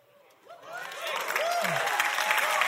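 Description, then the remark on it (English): Audience applause swells up from quiet and builds into a steady, dense wash of clapping that holds at a moderate level, with a few faint voices mixed in at the start. “That's about the right amount of applause.”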